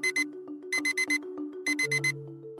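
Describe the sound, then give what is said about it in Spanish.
An electronic alarm clock beeps in quick bursts of two and then four, repeating insistently, with a low steady hum or tone underneath. “Después de dormir una hora menos de lo que acostumbro, 5 en vez de 6, me desperté 5 minutos antes de que sonara el despertador.”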